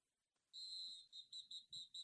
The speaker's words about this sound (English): I didn't know if I should have played the whistle there.